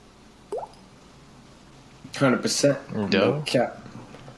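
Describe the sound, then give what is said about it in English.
A single short water plop sound effect with a quick upward-bending pitch rings out near the start, clean, followed by a pause before someone begins talking. “Oh, that was a satisfying little water sound or whatever.”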